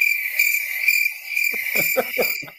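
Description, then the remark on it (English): Crickets chirp in a steady, continuous high-pitched trill at moderate loudness, and partway through a man's voice starts talking over the ongoing chirping. “Crickets.”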